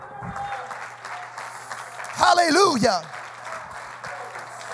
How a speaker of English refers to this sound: Would you clap your hands unto the Lord and magnify him?